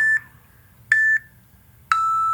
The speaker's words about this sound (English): And you have beeps that will cut you off.